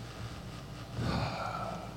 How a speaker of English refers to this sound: Heavy panting.